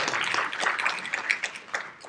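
A brief round of applause from a group, dense overlapping claps forming a steady crackling wash at moderate loudness, with no voices on top.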